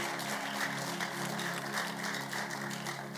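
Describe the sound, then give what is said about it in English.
A church audience claps together as a clap offering to the Lord in a dense, sustained wash of applause, many hands at once, steady and fairly loud throughout, with no voices standing out. “Give the Lord a mighty clap offering. Is that how you can clap?”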